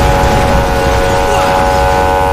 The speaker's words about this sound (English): This engine's messed up.